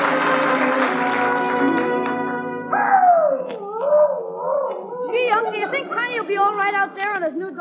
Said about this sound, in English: It's that dog of yours